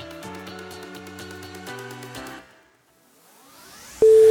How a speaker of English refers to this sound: The ringtone that Marty Bird has on Ozark used to be my alarm clock, and I got so anxious through the first two seasons.